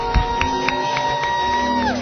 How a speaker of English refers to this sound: Clap your hands and give God a mighty shout of praise.